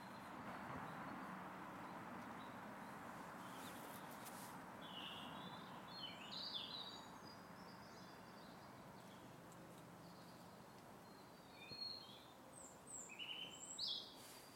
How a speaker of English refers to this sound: I think we should give prizes for people who email in and tell us what those bird songs are.